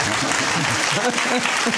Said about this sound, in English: I'm not going to keep telling you when to clap, all right?